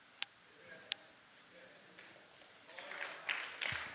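An audience at a church, mostly adults rather than students, claps faintly in answer to a question about growing the student group: a couple of isolated claps at first, then scattered clapping builds into a denser patter over the last second or so.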